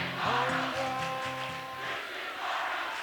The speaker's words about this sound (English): There's a little taste of the Cuthbertson crowd chanting back and forth to the Weddington Warrior crowd.